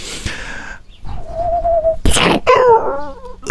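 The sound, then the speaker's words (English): An owl hoots, first a long steady hoot and then a wavering, quavering call after a brief burst of noise, loud, with no talking. “It's that owl. Every time I do something spooky, you do an owl.”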